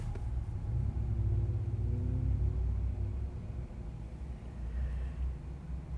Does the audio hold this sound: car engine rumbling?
yes